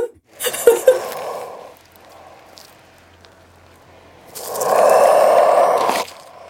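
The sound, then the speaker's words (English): An animal breathing in two long, breathy rushes: a rougher first breath, a quiet low pause, then a louder, steadier second breath with a hoarse, wheezy edge. No talking. “It's an animal breathing, but it's not slow down.”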